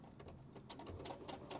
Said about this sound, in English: Okay, so I'm going to go forward. And I'm going to backstitch a little bit.